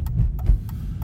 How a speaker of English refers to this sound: What's happening at the pool? Got some fire trucks here. That ain't fun.